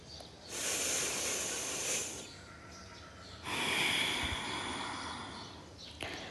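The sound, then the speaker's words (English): Two long, deep breaths during Bhastrika Pranayama breathing exercise: a slow, airy inhale with the shoulders raised toward the ears, then after a short pause a longer, steady exhale as the shoulders drop, with no talking. “With every inhalation, both the shoulders are going up closer to the ears. With every exhalation, you're dropping them down.”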